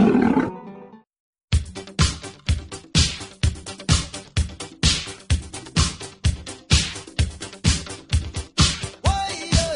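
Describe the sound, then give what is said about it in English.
A big cat lets out a loud roar, falls briefly silent, then follows with a long run of rhythmic, forceful grunting bursts, each one strong, close and sharply cut off. “One puff of Padilla and you'll roar too.”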